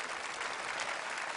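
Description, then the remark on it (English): An audience claps steadily for intercessors praying around the world, a dense, even wash of many hands with no pauses or swells over the short stretch, and no voices heard above it. “Can you give them a big clap, please?”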